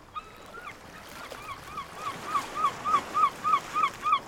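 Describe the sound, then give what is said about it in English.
A voice imitates honking bird calls, a steady series of about a dozen short nasal honks that start faint and grow louder, with no talking. “Wait, I don't want birds in there.”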